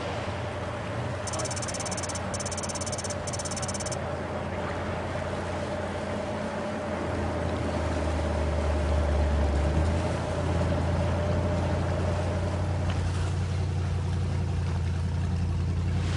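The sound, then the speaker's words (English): A boat engine drones steadily as the boat travels down a river, a continuous low rumble with a faint whine that swells midway, plus brief rapid high chirping near the start. “All right, so it looks like we're getting another call on a boat further down the river, and we're on our way right now.”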